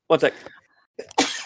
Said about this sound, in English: And I'm going to sneeze. 1 second.